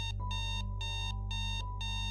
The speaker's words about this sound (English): I sat back down on the bed and took a big breath, and suddenly the alarm clock on the nightstand went off.